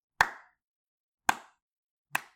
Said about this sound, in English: Is that my slow clap? Slow clap.